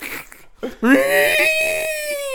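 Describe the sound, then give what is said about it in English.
A person imitates an elephant trumpeting: a few short breathy noises, then a loud, strained, high-pitched blare that rises and holds steady for over a second. “Is that your elephant impression?”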